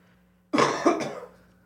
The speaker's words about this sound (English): Ugh, coughing. Sorry.